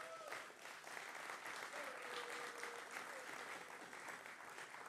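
A crowd at a group gathering applauds steadily for about five seconds to thank a speaker for his message. It is a dense, even wash of clapping hands with no break, while a few faint voices murmur underneath.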